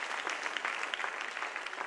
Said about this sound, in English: Clap your hands with faith, with expectation.